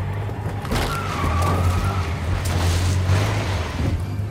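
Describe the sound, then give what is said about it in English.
A heavy truck engine roars steadily, its deep low rumble straining throughout, with a brief high whine and rough rattling noise riding over the drone. No one speaks. “The truck can't take much more, man.”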